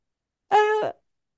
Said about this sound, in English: I don't know why I had to yawn at that moment. Apologies.